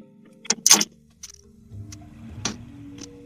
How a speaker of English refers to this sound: Why'd you put the keys up on the table?